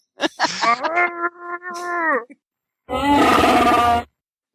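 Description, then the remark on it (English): A voice imitates Chewie's Wookiee roar in two bursts: a long, wavering, tonal howl that rises and falls, a brief pause, then a harsher, raspier growl. Both are loud, with no talking. “We need a Chewie.”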